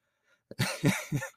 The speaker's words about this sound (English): Now you're coughing. It's like, should we just start over here?